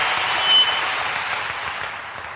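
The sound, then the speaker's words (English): A church audience breaks into steady, dense applause for the Holy Ghost, many hands clapping together in a bright, sustained wash that holds fairly even and then eases slightly toward the end. “Give the Holy Ghost a big hand clap.”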